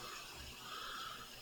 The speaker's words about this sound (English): All right, tasting. Pouring mine into ice.